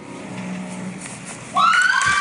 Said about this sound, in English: I was very impressed with the 7th and 8th graders. And here's, you can tell how good they were just by the crowd. Listen to this.